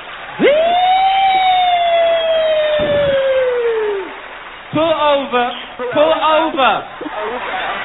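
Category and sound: vocal imitation, voice imitating a siren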